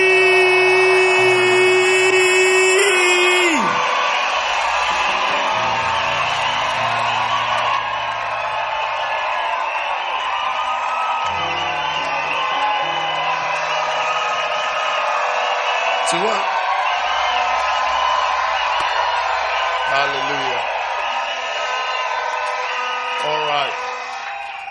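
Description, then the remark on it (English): A large crowd roars with cheers, screams and applause as it rises to its feet to welcome a bishop, a dense, sustained wall of noise for the whole stretch, with music and occasional shouts rising above it. “If you believe it, then rise to your feet. Put your hands together. Jump and scream as we welcome Bishop”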